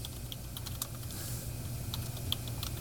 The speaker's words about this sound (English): I can see him typing. I've typed three times, and I keep going back and forth between three.